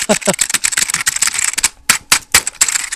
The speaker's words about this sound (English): at some point you can foresee in the future that there will be freely downloadable software that will process the sound of keyboards being typed and figure out what people are typing.